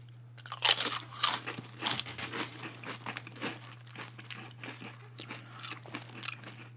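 Loud, crisp crunching of potato chips being chewed during a taste test, a rapid irregular series of brittle snaps and crackles with a steady low hum underneath and no talking.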